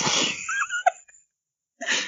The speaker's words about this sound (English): Bless you.